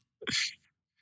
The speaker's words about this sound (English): Anyway, we wake up early. That was me sipping coffee, and I come here with Wet Hair.